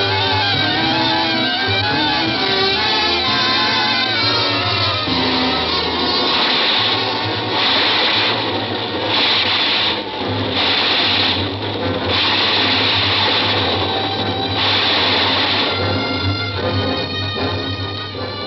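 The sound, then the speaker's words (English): A subway train runs with a loud, steady mechanical roar and rumble, overlaid by a rhythmic pulsing clatter through the middle stretch, with no voices. The train is passing Summer Station, 116th Street. “We passed Summer Station, 116th Street, I guess it was.”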